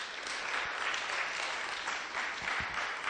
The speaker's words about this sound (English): World Christian Ministries, a huge round of applause.